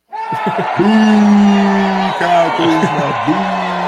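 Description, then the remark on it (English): A large crowd boos loudly, many voices blending into a low, sustained drone that wavers in pitch for several seconds, with scattered shouts rising above it. “Are they cheering? No, that wasn't. That was a boo.”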